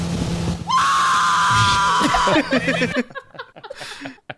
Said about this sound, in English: This is a cry of ecstasy, though. Like, this sounds like … is being gutted.